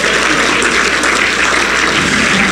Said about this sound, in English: Somebody give the Lord a hand clap of praise for the work that was done on Calvary.